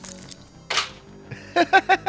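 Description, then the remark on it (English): Dice rolled for initiative in a game tumble across a tabletop: a brief scuffing rattle, then four quick, evenly spaced clacks with a slight hard ringing, fairly loud against a quiet background. “I want you to roll for initiative.”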